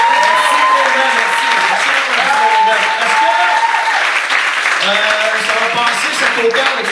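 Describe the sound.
A crowd applauds steadily and loudly for several seconds, the dense clapping staying even throughout while voices carry faintly over it.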